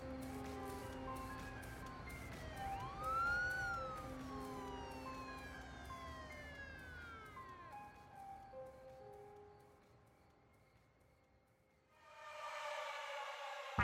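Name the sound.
emergency vehicle siren approaching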